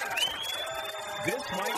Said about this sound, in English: This might be the best crowd we've had. All right. All week long. But we have this group in front of us cheering, and then there's people down the sidelines here on our football field, and nobody's cheering over there. They're waving.